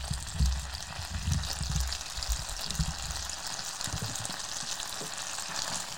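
food sizzling

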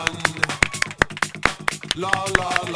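a few people clapping

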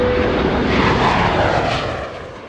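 airplane engine in flight

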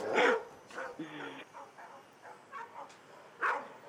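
dogs barking

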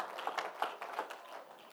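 audience clapping hands

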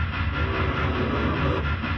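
train running on rails

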